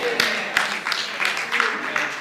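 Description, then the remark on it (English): An audience claps in a steady unison rhythm, about three sharp claps every second, over a dense wash of crowd noise and voices, standing and clapping along at a pastor's urging during a sermon. “Come on, clap your hands one more time with me.”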